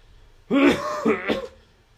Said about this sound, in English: Sorry, I had a cough.